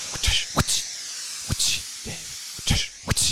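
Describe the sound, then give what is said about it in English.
Steam hisses in a steam room in a series of short, sharp bursts, about five or six spaced irregularly over a steady airy background. The sound is fairly loud, with no voices. “It's a steam room, baby.”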